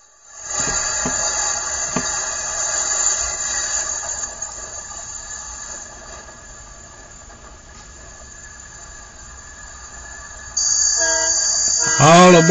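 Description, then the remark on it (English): A train rumbles past as its horn blares in a long, steady blast over the clatter of the cars, then swells louder near the end. No voices. “All aboard, get aboard this train and ride.”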